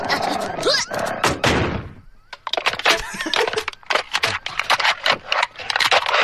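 A dog slams repeatedly into thin, paper-thin, tinfoil-like corrugated metal doors, producing loud, clattering bangs and rattling thuds in a rapid, uneven series, with a brief lull partway through.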